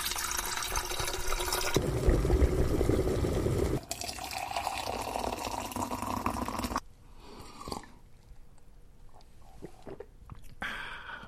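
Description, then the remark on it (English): Water rushes steadily from a tap into a kettle being filled to make tea, the hiss shifting in tone as it fills, then cuts off, leaving quieter clinks, drips and handling noises. “All right, let's put the kettle on then.”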